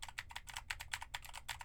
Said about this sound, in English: Now I am typing on a keyboard with Gateron blue switches so you can hear how much of my voice versus how much of the keyboard it picks up.